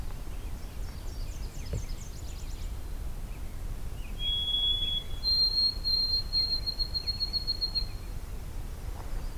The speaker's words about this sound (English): This is the Oh Sweet Canada song. Or Old Sam Peabody. It's basically a rhythm to the mnemonic.